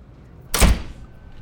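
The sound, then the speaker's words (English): A train door slides shut in one quick rush that ends with a heavy thunk, then fades back to a quiet background hum. No one speaks. “You can't get on this train. The door, it won't open.”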